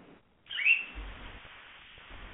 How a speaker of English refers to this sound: I heard something like a bird in the background. What do you think that was about?